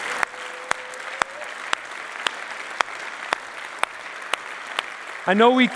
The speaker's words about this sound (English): I know we clap. And I know we clap, and because we know the angels are rejoicing, right? The angels are rejoicing. There's a celebration going on in heaven, right? But when we clap, you know what that does?